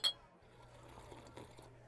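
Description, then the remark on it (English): A single bright clink of beer glasses tapping together in a toast at a bar, right at the start, ringing briefly before fading into a quiet room hum with faint background murmur. “With good taste in beer, apparently. Glad I guessed right. Cheers.”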